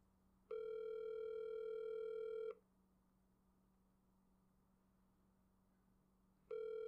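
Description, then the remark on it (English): A telephone ringback tone on a live phone call: a steady electronic burst lasting about two seconds, a long pause, then the next burst beginning. It sounds clear, over a faint low hum. “It's ringing.”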